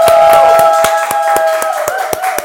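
A small audience claps together in a steady rhythm for a one-year work anniversary, about ten sharp claps in a couple of seconds, over a faint sustained tonal hum, with no talking.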